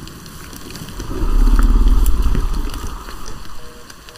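A monster growl sound effect: a deep, rough rumble that swells up loudly for about two seconds, then fades into a grainy, crackling tail. No voices accompany it.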